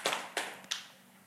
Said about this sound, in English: I'm going to take those claps as, you know what? I'm receiving it. I'm getting it. Not just this golf clap because you just don't, this isn't interesting to you.